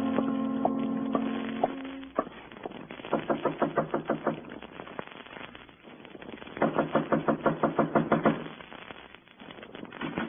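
Two bursts of rapid, evenly spaced knocks on a door in the morning, fairly loud, separated by a short pause, with a low humming tone at the start and no one talking.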